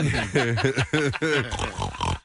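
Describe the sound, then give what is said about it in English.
A voice imitates a pig, making a quick run of loud oinks and grunts in a choppy rhythm with no clear words. “What am I, pig?”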